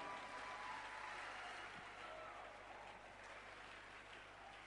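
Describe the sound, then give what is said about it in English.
Steady applause from an audience for the youth choir, a dense wash of many hands clapping at an even level for several seconds with no voices standing out. “Why don't you clap for the youth choir?”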